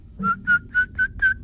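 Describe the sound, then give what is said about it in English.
A voice whistles a short run of five or six clear, steady tones in a quick rhythm, imitating a flute, alone with no talking. “Sounds just like a flute.”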